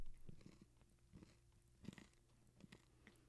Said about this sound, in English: It sounds like if I go into like my Apple library to like use a sound effect for chewing, I'd be like, that's some gentle chewing.